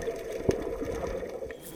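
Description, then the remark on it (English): A muffled, steady wash of ocean water heard underwater, with a single dull knock early on and no voices. “The Cyclor is underwater in the ocean, tracking Andrew Bronze.”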